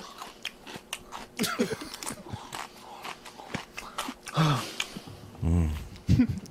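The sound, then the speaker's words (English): Crunchy chewing and biting, with repeated crackly crunches of something like paper or a dry snack, a few louder chomps near the end and some faint vocal sounds. “What does he say at the end of that chewing clip?”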